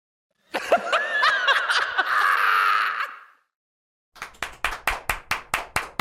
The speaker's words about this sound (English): Wow, welcome back, you guys. Wow, claps all around.